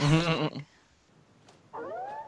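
A feeble emergency siren gives a short wavering tone, falls silent for about a second, then starts a thin rising whoop that cuts off quickly. No one speaks.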